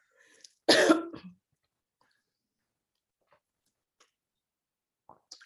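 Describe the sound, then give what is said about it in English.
One loud cough bursts out near the start, then trails into near silence broken by a few faint, soft mouth and handling sounds toward the end as a cough drop is taken out. “I just taking my cough drop out.”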